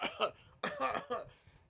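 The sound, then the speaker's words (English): A voice imitates a harsh, throaty cough in three quick bursts, fairly loud, with short gaps between them, mimicking someone about to cough in another person's face. “They started to breathe hard, right in your face, bro. Like, they want to cough. They might do this.”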